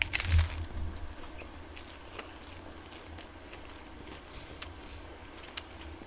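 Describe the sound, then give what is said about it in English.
A loud crunchy bite into a Taco Bell taco, followed by scattered crisp crackles of chewing spread unevenly over a few seconds above a steady low rumble. “Yeah, it's going to be fucking terrible for me, but we got one taco from Taco Bell because we already maxed out everything else.”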